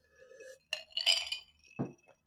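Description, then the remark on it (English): Glasses clink together in a toast, a couple of bright clinks with a faint lingering ring, followed by a softer, duller knock as something is set down. “Cheers to that, babe. Clink. Clinks.”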